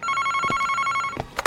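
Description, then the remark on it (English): A telephone rings with a loud electric bell trill that holds steady for over a second, broken by a few sharp clicks and knocks near the end. Nobody speaks. It is a hotel phone with a curly cord, at a Tulsa Holiday Inn. “Hotel phone.”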